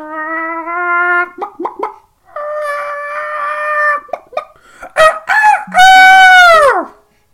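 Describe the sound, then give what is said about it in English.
A person imitates a chicken: drawn-out nasal tones broken by quick clucks, ending in a loud, long rooster crow that slides down in pitch. “I could do animal noises, but that's obvious. That's easy.”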